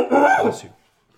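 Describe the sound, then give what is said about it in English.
A single loud sneeze: a brief voiced intake swelling into a sharp, hissing burst that cuts off abruptly, followed by silence. “That's how I sneeze. It's an event.”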